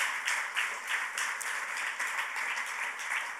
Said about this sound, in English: Can you clap your hands? Come on, somebody.